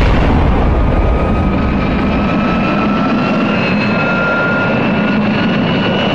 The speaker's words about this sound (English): Oh man, the helicopter! It's crashing! Oh man!